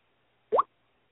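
A phone notification sounds once: a short, rising bloop that sweeps quickly upward in pitch and lasts barely a tenth of a second, alone against near silence.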